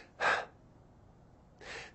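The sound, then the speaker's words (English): Two quick, loud, airy breaths about a second and a half apart, a person deliberately demonstrating in exaggerated form the tense, shallow breathing of overstressed adrenals, with short, sharp exhalations shorter than the inhalations and no talking. “When your adrenals are overstressed, the breathing is kind of like this.”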